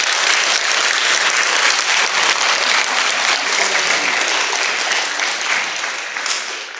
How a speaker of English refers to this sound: No voices, just hand clapping for the ladies. Would you clap the wonder of the ladies? Enjoy it, seriously. It's what they really think about you. If you have a sense of appreciation for them, put your hands together now and clap them.